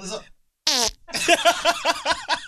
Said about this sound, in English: I didn't even think about it. I just farted into the mic, and now I got to talk into that bitch.